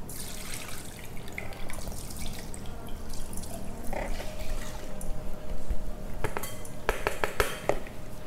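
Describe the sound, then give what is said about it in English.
Liquid trickles and drips steadily through a strainer into a glass jar as the flours are strained out while making kombucha, with light clinks of glass and metal near the end, fairly quiet. “So we're just gonna strain the liquid out and strain out the flours, essentially. I'm just putting it in this glass jar.”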